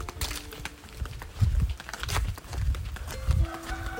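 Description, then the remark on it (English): Flip-flops slap against concrete in a steady, slightly uneven walking rhythm, each step a soft thud with a sharp smack, over a faint low hum and no talking. “A lovely sound of flip-flops on concrete.”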